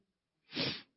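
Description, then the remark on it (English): A single sharp sneeze bursts out after a brief quiet moment, a short, breathy, fairly loud blast that fades quickly, with no talking around it. “God bless you.”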